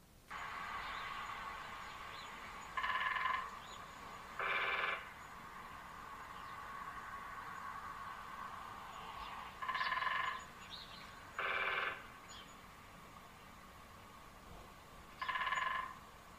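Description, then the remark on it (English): A woodpecker hammers in five short, rapid-fire bursts, each lasting about half a second and spaced several seconds apart, over a steady background hiss. No one speaks. “I'll insert a clip here of said woodpecker.”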